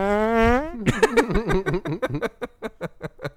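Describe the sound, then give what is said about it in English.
A loud recorded fart sound effect played from a music streaming service: a sustained buzzy blast that breaks into a rapid string of wet sputtering pops, slowing and spacing out toward the end, with no talking. “Spotify has fart noises on it.”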